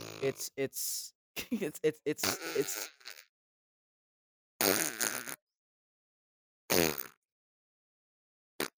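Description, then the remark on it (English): Someone blows a string of wet, sputtering fart noises with their mouth, loud, in bursts separated by pauses, ending with a brief final blurt. “It's you could stop doing that now. Okay, it's fart sounds”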